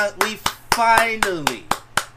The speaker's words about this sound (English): Clap it up, man. Clap it up.